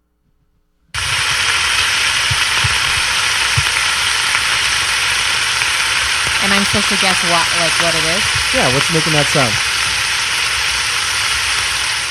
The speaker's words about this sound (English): Well, it sounds like sizzling bacon. That is the answer.